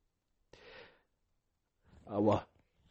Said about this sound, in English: Why do we do that? Why do we say bless me after sneezing? Does anyone know?